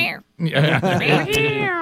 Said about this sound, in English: Did you like that cat fight?